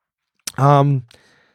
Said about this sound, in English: Stop with the yawning.